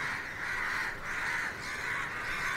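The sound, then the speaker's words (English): A dense chorus of crows cawing continuously at the Dakma, the Tower of Silence, many birds overlapping in a harsh, raucous din that stays loud and steady throughout, with no speech. “The reason you have this cacophony of crows just now is they actually think that a body is being brought, and therefore they're all excited.”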